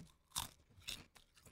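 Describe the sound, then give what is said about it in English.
Loud crunches of teeth biting into a crispy balsamic-flavoured snack right into the microphone, a sharp first bite followed by a second and several softer chewing crackles, with no talking. “Okay, you ready for the crunch? You ready? Into the microphone.”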